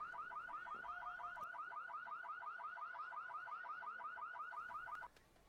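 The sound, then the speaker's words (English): A car alarm blares with a rapid, repeating warble, each rising whoop pulsing steadily for about five seconds before cutting off abruptly. It sounds loud, with no talking. “What's the point in alarms?”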